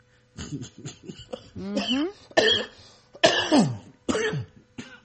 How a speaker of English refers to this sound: Ah, cramping up, man. I cough too hard.